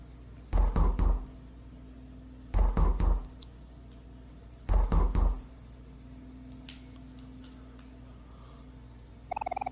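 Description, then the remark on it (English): Three bursts of loud knocking on a door, each a quick run of about three raps, spaced roughly two seconds apart, followed by quiet room tone. “Something's banging on the door.”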